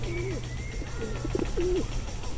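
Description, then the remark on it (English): About 40 to 50 pigeons wander around someone's feet looking for crumbs, their soft, throaty coos overlapping in short bursts against a steady hum of outdoor background noise. “Yeah, maybe 40, 50 pigeons here around my feet.”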